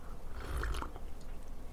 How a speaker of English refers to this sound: Hold on, I gotta sip this coffee.